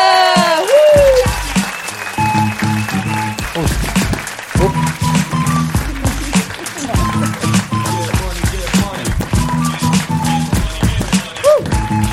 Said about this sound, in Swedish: Mina damer och herrar, en varm applåd för Elsa Billgren.